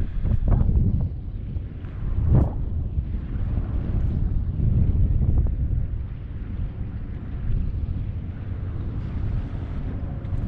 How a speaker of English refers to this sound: It's pretty windy out here. It's cold.